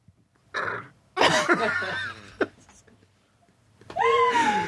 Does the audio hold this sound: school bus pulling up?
no